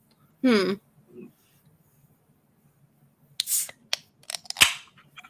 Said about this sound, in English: I got to crack open a nice BrewDog Cannon Blast, courtesy of my friend DK2S_Sweet.